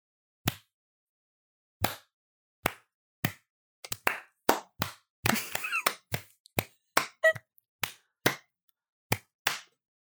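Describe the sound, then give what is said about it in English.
Sparse, scattered handclapping as participants applaud themselves for successfully completing a mission: about fifteen sharp, loud claps at an uneven pace, briefly bunching into a quick flurry midway before thinning out again. No one speaks. “Everyone, give themselves a round of applause.”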